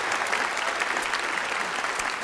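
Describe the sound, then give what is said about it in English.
An audience breaks into sustained applause for Jesus as praise, many hands clapping in a dense, steady wash of crisp claps with no pauses, loud and even throughout, with no voices standing out. “Would you just give Jesus a hand clap of praise?”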